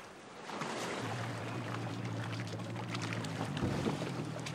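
Water sloshes and splashes as a water pressure meter is hauled up out of Lake Wakatipu, over a steady low hum of an idling boat motor, with a brief louder splash near the end.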